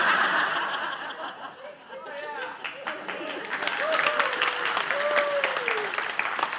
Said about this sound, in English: I thought you were clapping for me.